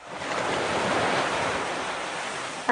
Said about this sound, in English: Hold on, let me walk closer to the ocean. Is that better? Sounds like waves. Yeah, I'm in Malibu.